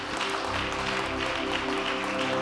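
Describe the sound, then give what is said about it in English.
A crowd claps steadily and densely throughout as a clap offering to the Lord after a prayer, a continuous wash of many hands, with sustained low instrumental tones holding underneath. “A clap offering will do.”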